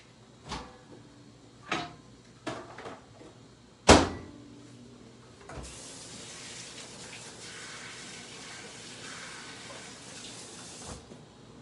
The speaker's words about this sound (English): All right, so I'm going to put it in the microwave, and here we go.